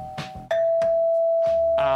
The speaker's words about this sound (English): That sounds like a telephone. That's an old doorbell ringing. Okay, I think we're done with the doorbell.